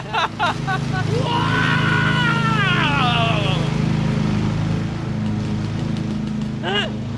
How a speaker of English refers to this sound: Oh, you're on your riding mower? This guy's on his riding mower.